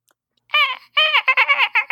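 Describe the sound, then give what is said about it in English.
A voice imitates a dolphin call to call dolphins: a burst of high, squeaky chattering clicks and whistles, one longer squeal followed by a rapid string of short, bright chirps, fairly loud. “What if I went to call the dolphins?”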